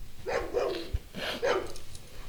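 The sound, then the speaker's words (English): A puppy gives a run of high, whiny yips and barks, two quick pairs close together, fairly loud, with whimpering tones and no voices. “Shush your little mouth, puppy.”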